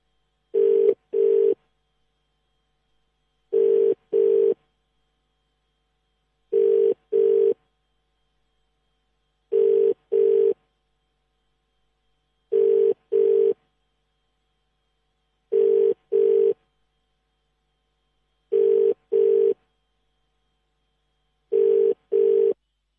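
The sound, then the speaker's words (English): An outgoing phone call to Mefeife Valashia's number, which looks like a German number, rings on the line: a steady ringback tone in paired double rings, repeating about every three seconds, eight times, with silence between and no voices. “as you can hear, that's Mefeife Valashia's number, just ringing there.”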